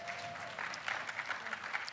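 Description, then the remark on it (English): An audience breaks into applause, a dense wash of clapping hands that swells a little after the first half second and holds steady and moderately loud to the end. “I love, yeah, you can clap for that.”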